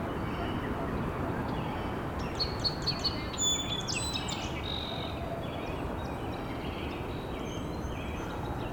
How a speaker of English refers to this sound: Blue jay.